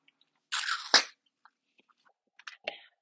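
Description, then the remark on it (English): A sip of water, with a wet slurping burst, a few faint mouth clicks and gulps, then a second shorter sip near the end. No talking. “Let me take a sip of water really quick.”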